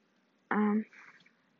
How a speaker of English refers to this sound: my kids playing with a water bottle